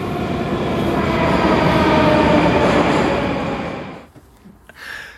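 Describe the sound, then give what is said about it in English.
A Moscow metro train roars loudly into an ornate station full of ornaments, mosaics and light fixtures, its heavy rumble and whining hum sustained for several seconds before the noise drops away sharply as it comes to a halt. “And here's the next train.”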